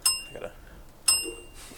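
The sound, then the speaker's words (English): A small bell, with a headphone cord stuck in it, dings twice, about a second apart, each strike ringing bright and high before fading quickly. Quiet, with no talking. “Your headphone cord is stuck in the bell.”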